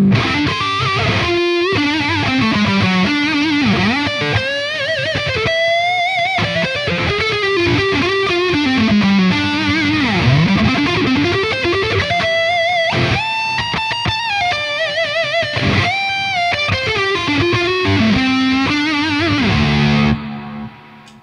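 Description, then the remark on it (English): A distorted electric guitar lead on the neck pickup plays a sustained, singing melody with frequent bends and slides, loud and steady for about twenty seconds before ending abruptly. No voices. “And then the neck and pickup gets used for leads a lot.”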